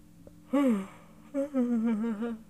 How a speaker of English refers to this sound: Yes, I'm yawning a lot.